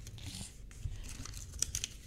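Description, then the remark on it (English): Paper being torn by hand along the line it was folded on, a soft ripping with scattered crackly bursts that continues for about two seconds, fairly quiet, with no talking. “Oh, she's ripping the paper with the line that she folded.”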